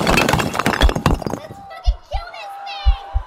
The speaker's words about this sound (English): I hear people breaking down the basement door.